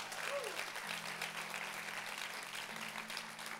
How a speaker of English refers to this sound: Come on, clap right now, and thank God for who He is.